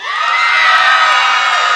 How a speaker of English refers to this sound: Good. Good. They did a good cheer. I was going to make them do it again if not.